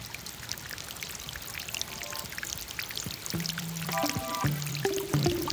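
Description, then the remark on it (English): Water pours and trickles steadily throughout in Sydney, a continuous splashing wash that grows slightly louder, with a few short, low tonal hoots breaking in during the second half. “All Sydney's got going for it is water.”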